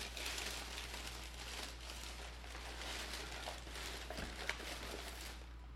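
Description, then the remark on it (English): Paper packaging crinkles and rustles steadily as it is pulled from a box about 1 foot by 10 inches by 8 inches, weighing maybe a quarter of a pound, a continuous texture with a few sharper crackles and no talking. “1 foot by 10 inches by 8 inches box, and it maybe weighs a quarter of a pound. Yeah, probably. It's just paper.”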